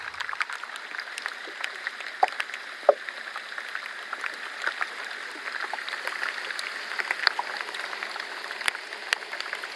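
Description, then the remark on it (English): Fizzing iceberg ice crackles steadily, a dense hiss of tiny pops and clicks with occasional sharper snaps, sounding like a carbonated drink or light applause, with no voices. “here's some more of that fizzy iceberg”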